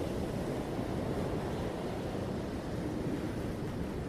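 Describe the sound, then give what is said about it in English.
A steady, soft wash of calm ocean waves flowing over wet sand on a sunny beach rolls on without pause, a broad low rushing that stays even and calm throughout, with no voices or other sounds. “The rhythm of the calm waves flow over the sand and it relaxes you.”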